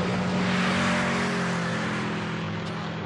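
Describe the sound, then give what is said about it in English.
A loud motorbike engine drones steadily throughout a film scene, a sustained throaty roar with a low humming tone and broad noisy rumble, with no voices. “So, this is the motorbike filler scene, as I call it.”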